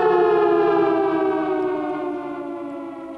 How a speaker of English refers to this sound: Five alarm siren there for Joe.